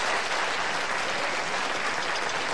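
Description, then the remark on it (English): A studio audience in a TV studio applauds at David Letterman's request, steadily, a dense wash of many hands clapping at an even, sustained level with no voices breaking through. “Applaud if you've never been to one of these places.”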